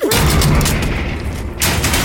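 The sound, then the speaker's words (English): A heavy, booming slam as a man throws his weight against a door, followed by a loud rumbling clatter that briefly dips before a second forceful burst. No voices are heard. “With a sudden movement, the man threw his weight to the door and sent me reeling.”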